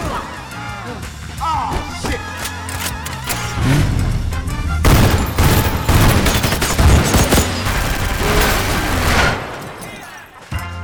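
Rapid bursts of gunfire in a film scene crackle over a driving music track, sharp repeated shots landing in sync with the beat, loud, with brief shouting voices mixed in.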